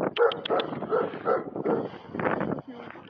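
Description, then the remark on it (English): A large dog, about six feet tall standing up, lets out a run of short barks mixed with whimpering yelps, coming in quick uneven bursts over about three seconds. “There's a big dog on you. I know, he's a big doggy.”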